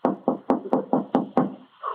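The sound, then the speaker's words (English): A rapid series of about seven firm knocks on a wooden door by a wife and a doctor, evenly spaced, followed by a faint murmur of a voice. “Shall we knock?”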